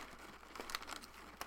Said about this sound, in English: It's better than listening to you crunch on fucking pretzels. All right, let me just have two more pretzels and I'll jump back in.